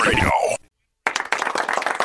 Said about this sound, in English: Thank you guys for the ass claps. Appreciate it.